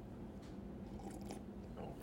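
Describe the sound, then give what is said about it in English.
Someone bites and chews breakfast, with a few crisp crunching bursts over a steady, moist mastication sound; no one talks, and the chewing stays moderately loud throughout. “I'm going to eat more.”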